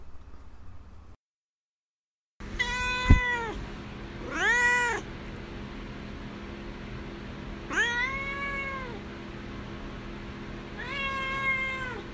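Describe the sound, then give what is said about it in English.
A pet cat named Duarte meows several times in drawn-out, wavering calls, fairly loud, with pauses between them and a steady low hum underneath; a short silence comes before the first cry. “All right, now it's time for Duarte's Corner, where my cat Duarte will share his two cents about the book.”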